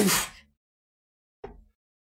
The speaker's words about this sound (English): One second, I'm going to sneeze.